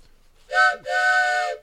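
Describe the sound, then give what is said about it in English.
The whistle of the Valley Forge Express train bound for Ciudad Miniatura sounds in two loud blasts, a short toot followed by a longer sustained one, with a bright harmonic chord tone and no voices. “All aboard the Valley Forge Express to see you, Ciudad Mintura.”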